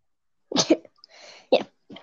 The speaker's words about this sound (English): But like, oh, I'm gonna just sneeze. That's all right.